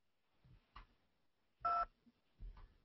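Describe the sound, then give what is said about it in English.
A single clear dual-tone telephone keypad beep, pressed in a Best Buy store's automated phone menu, sounds near the middle, loud and brief, set between a few faint clicks and soft handling noises, with no talking. “For questions regarding a previous purchase and all other questions, press 2.”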